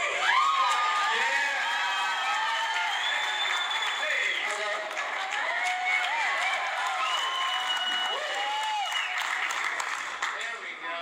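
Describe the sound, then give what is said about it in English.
A crowd cheers and claps steadily, with overlapping shouts and whoops rising above a dense wash of applause that stays loud throughout, cheering because a microphone has finally been turned on. “So did you guys get why they were cheering?”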